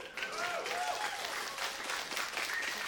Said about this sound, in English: I did not expect applause, but thank you.